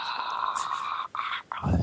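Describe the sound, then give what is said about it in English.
A dog whimpers in a long, high, continuous whine with brief breaks, ending in a low rumbling growl. Moderately loud, with no talking. “You just left a dog in there.”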